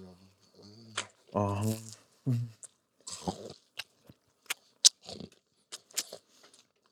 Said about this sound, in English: Jalapeno and pineapple pizza. Let's get a taste test. Hold on. Mmm. Yeah, guys, you're going to hear me chewing the whole time.